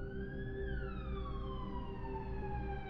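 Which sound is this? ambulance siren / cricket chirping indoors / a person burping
ambulance siren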